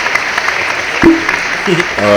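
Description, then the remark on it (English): A short burst of canned applause from a soundboard button, steady crowd clapping with a few whoops and cheers rising over it, fairly loud. “Put a round of applause button.”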